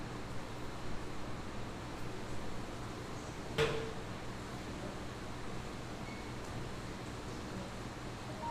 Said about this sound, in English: Wow, is that rain? Yes. Wow, it is. That's loud. Very loud. And I feel for anybody who's outside right now.